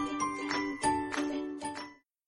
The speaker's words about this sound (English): And if you hear a little ring, it's because it's my little timer so that I won't go over.